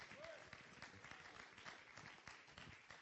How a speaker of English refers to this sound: And we clap our hands unto the Lord right now and give him thanks and praise for what he's fixing to do in this place.